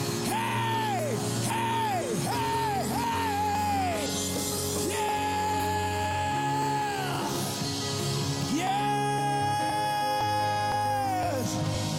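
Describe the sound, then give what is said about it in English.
A loud, sustained wall of many voices of a worship audience yelling and crying out together, with rising and falling vocal wails over a steady full backdrop that stays intense throughout. “If you're about to shine like you've never shined before, shout like you've never shouted before. Praise like you've never praised before.”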